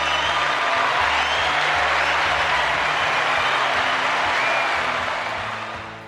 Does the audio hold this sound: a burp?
no